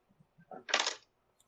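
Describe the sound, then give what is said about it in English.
Dice roll across a tabletop: a few light taps, then a brief loud clattering tumble that settles quickly. No voices. “Jeez, not that die. That is the wrong dice.”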